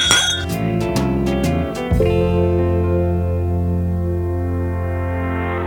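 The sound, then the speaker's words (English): Whiskey glasses clink together several times in quick succession in a toast, bright, over a steady low droning tone that carries on after the toast ends. “Cheers, come on. Let's cheers out of that.”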